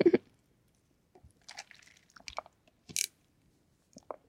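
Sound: sipping water and swallowing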